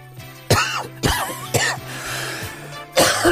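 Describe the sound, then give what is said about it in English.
A person coughs repeatedly in a loud fit, four harsh bursts spaced about half a second to a second apart, with a low steady hum in the background, during a doorstep talk with a Monster Raving Loony Party canvasser in Tewkesbury. “I think you're coughing speak volumes.”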